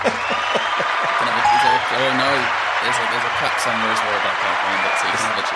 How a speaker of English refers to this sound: Now, with your new podcasting tool, that's where you should hit the cheer button, because you got it right.